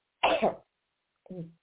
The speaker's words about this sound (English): When I talk, the more I cough.